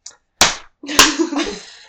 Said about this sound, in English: And I just slapped my leg, and that was...